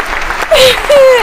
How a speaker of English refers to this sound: All right, clap, clap, clap, clap, clap, clap